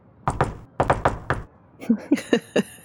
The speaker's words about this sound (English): So what we'll do is we'll say, as you guys were having this conversation, Dr. Powell, you hear a knock on the door, a jaunty knock.